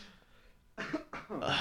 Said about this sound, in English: A good COVID cough. That's what it sounds like when you get like hit with a COVID cough and shit. Reverberates inside of you and shit.